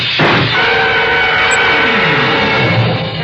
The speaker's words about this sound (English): Whoever threw those shots through the frosted glass in my office door wasn't interested in checking up on his marksmanship.